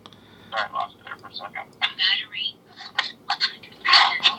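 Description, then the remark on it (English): Choppy, garbled voice over a thin phone line during a phone interview, breaking into short broken bursts with abrupt gaps as the Bluetooth connection drops in and out, at a moderate level against low background hum. “Sorry, my Bluetooth is going wonky.”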